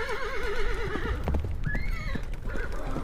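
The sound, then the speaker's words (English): Horses pulling a trap start forward as the driver shakes the reins: a horse gives a loud, quavering whinny, then a shorter rising neigh, while hooves clop steadily on a hard surface underneath, fairly loud throughout. “The horses started forward, and trap and all disappeared down one of the dark openings.”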